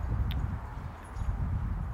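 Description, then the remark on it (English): Wind buffeting an outdoor microphone on a balcony on a moderately windy day: a steady low rumble with uneven, gusty thumps that swell and ease over two seconds, moderately loud, with no voices. “And we're getting a little bit of wind noise, but nothing major.”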